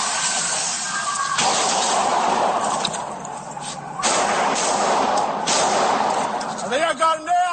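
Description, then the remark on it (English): Police body camera footage of a bank shooting in downtown Louisville: loud, harsh gunfire erupts in abrupt bursts as police open fire on a 25-year-old gunman, over a constant roar of noise, with chaotic shouting voices rising near the end. “A lot of gunfire, and you can hear the chaos of it all.”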